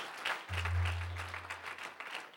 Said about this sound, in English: Clap your hands for that one.